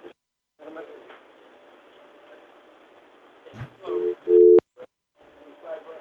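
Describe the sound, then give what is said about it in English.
A telephone dial tone bursts in loud and brief near the end, over a hissy phone-line background carrying a faint steady hum, with a sharp click right after. “I'm ready on the dial tone if he moves the handset.”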